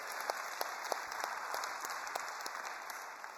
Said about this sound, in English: Let's give them one more hand clap and see how much we appreciate them.